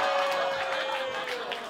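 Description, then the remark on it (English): A crowd applauds and cheers in a steady, dense wash of clapping and voices that holds at an even loudness for the whole short stretch, with a faint sustained tone running underneath. “The applause that just got was evil.”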